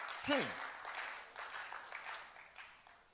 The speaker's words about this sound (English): Clap for yourselves.